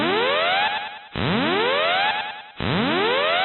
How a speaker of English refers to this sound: No need for alarm, that's the incoming podcast alarm.